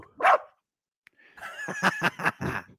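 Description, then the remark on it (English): A dog barks once, then after a short pause lets out a quick run of high, whiny barks and yips, fairly loud with no one talking. “This dog.”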